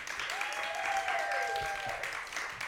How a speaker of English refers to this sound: Suddenly, the crowd lets up a cheer as Wiley Post's plane comes into view.